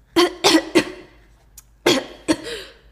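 Someone coughs five times up close and fairly loud: a rapid run of three harsh coughs, a short pause, then two more. No one speaks.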